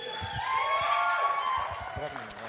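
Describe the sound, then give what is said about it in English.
An audience applauds steadily for a couple of seconds, the dense clapping mixed with cheering and chattering voices, holding at an even, fairly loud level throughout. “I'm not preaching yet, so you don't have to clap.”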